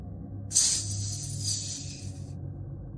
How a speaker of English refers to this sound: Set into the far wall is a fireplace black with soot. Soft hiss escapes from the hearth.